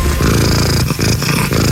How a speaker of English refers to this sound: so they sent over a sound engineer to record Bella's purr. And this is how it went. This is an official attempt for the loudest purr by a domestic cat.